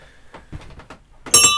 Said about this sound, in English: can you do me a favor and ring us the ship's bell to get us started?